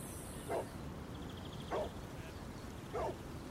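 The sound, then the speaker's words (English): Three short, evenly spaced dog barks with a whiny, whimpering edge ring out over a steady background hiss, each yelp brief and moderately loud, with no talking. “Dog. Nature.”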